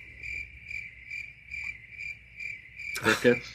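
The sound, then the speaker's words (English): Crickets chirp in a steady, even rhythm, about two pulses per second, with a sustained high trill underneath, until a brief louder, broader burst of sound cuts in near the end. “Crickets.”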